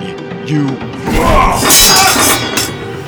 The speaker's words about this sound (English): My blade shattered at first contact with Aramon's